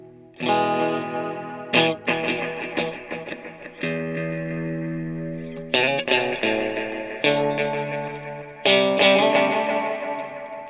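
Electric guitar played through an effects unit with a clean, undistorted tone. Sustained chords are struck roughly every two seconds, each ringing out with a shimmering, chorused tone and sharp strum attacks. Fairly loud, with no voices.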